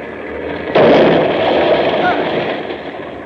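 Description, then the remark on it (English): A truck is driven through doors with one sudden, loud crash, followed by a sustained, heavy roar of noise that slowly fades over a few seconds. “I'm driving through those doors.”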